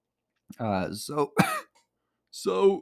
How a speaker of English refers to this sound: I feel like the cough is taking over my soul.